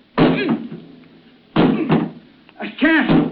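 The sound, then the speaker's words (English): Three heavy, booming blows strike a jammed metal cabin door on a sinking ship at uneven intervals, each ringing out briefly before the next, with strained vocal grunts mixed into the later impacts. “The door. I can't open it. It's jammed. Well, try breaking it down.”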